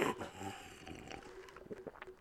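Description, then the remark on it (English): Someone takes a noisy, wet sip of Powerade, a drawn-out slurp followed by a few shorter gulping and smacking sounds, with no talking. “Yeah, I sipped so you could hear it.”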